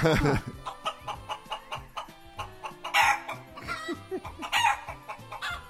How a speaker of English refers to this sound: Okay, do you have names for those chickens?